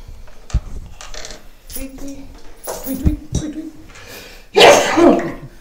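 human body sound, sneeze

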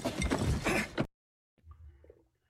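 household object, ice clinking

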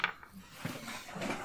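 dice rolling

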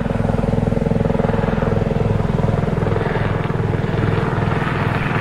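vehicle, helicopter flying overhead

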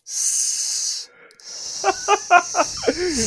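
sound effect, snake hiss sound effect

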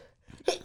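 human body sound, sneeze

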